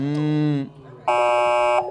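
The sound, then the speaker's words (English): Two loud, harsh buzzer blasts like a car horn, a lower honk of about half a second, a brief pause, then a higher, brighter blare under a second, signalling that both players' guesses in a quiz were over. “There's a thing that happens where there's like a car horn.”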